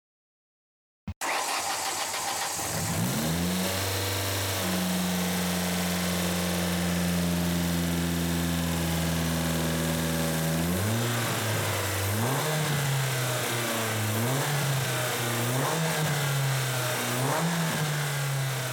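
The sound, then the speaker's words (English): A 2003 Ford Focus SVT with a 2.0-liter Zetec engine rated at 167 horsepower starts up, settles into a steady idle, then revs up and down several times, loud and continuous with no talking. “That was a 2003 Focus SVT.”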